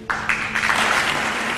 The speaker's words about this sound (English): And the whole Congress gets up and starts applauding, including the Republican Party.